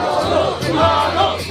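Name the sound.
football crowd cheering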